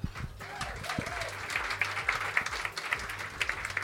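An audience breaks into steady applause, a dense crackle of many hands clapping at once, holding at an even level for a few seconds with a faint voice or two underneath.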